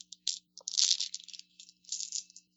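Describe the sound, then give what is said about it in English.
Dice rattle and clatter in short bursts of bright, clicking noise, a quick shake followed by a longer tumbling roll and a final scatter, with no voices over it. The roll comes up eights. “I rolled eights.”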